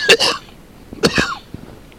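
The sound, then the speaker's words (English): Two forceful coughs in quick succession from a person with asthma, each harsh and breathy with a rasping edge, followed by a faint catch of breath; loud, with no talking. “Oh, goodness, I had a coughing spell there.”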